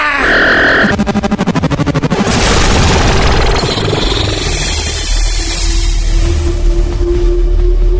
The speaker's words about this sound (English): Nicely done. Sonic beam shattered crystal. Clever.